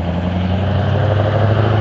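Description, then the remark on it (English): A truck engine idles with a steady, deep rumbling drone at constant loudness, uninterrupted, with no voices over it. “For instance, this guy's truck.”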